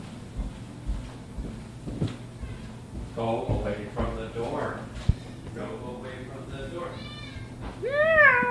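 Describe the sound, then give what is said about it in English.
A cat, just brought home from the vet and drugged, meows insistently several times wanting to go outside, the calls growing louder and more plaintive toward the end, over a low steady background hum. “Quark was not allowed to go outside after we brought him home from the vet today”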